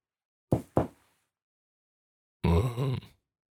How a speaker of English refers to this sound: I knock on his door. There's no answer.